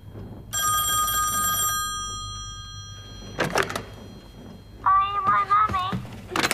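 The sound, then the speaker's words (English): An old-fashioned telephone bell rings in one short, bright burst, its tone lingering briefly before a dull thump, and then a voice follows. “He can make phones ring, he can.”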